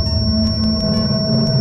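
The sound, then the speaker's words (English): A synthesized thunderstorm-like ambience from a modular synth patch, the Bolt Octave fed into an O Control sequencing the flats: a dense, rumbling low drone with a steady high whistling tone on top and soft, evenly spaced ticks. It stays loud and continuous, with no talking. “So right now we have a bit of a thunderstorm going on.”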